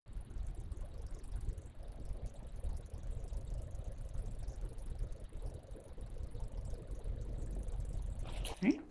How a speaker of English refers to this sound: And then towards the end, what sounds kind of like white noise, but if you listen very carefully, and I tried to amplify it, it almost sounds like rapidly dripping water.